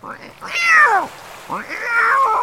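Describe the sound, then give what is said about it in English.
Two loud, drawn-out meows from Sam, a ship's cat angry after his ship sank, with a harsh, complaining tone, each rising then sliding down in pitch, the second ending in a wavering yowl, with no talking. “By this time, the cat had had absolutely enough of being sunk. The sailors said he was really angry.”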